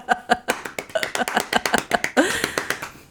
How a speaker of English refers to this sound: Golf clap.